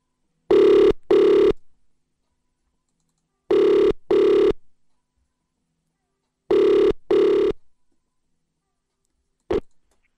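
A phone ringback tone on an outgoing call: three double-rings, each pair of short buzzy bursts separated by long silences, clear and steady, followed by a brief click at the end.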